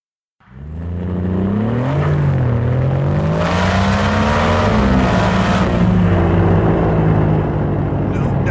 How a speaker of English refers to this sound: The struggling engine of the aged Italian M40 coughed and choked to an asthmatic halt.